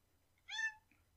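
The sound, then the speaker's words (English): A single short meow from a female cat, clear, with a rising then falling harmonic tone lasting under half a second against a quiet low hum. “But first, a word from Penny. Penny? Hello. She's a good kitty.”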